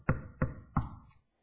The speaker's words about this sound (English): He said, I'm standing knocking.